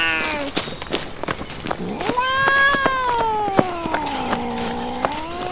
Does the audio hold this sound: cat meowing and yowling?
yes